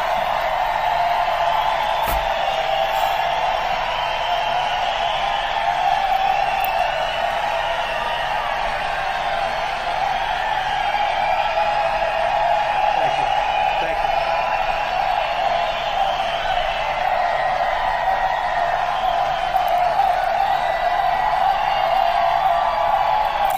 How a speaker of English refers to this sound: That was a big line. And the people were cheering. They weren't stopping.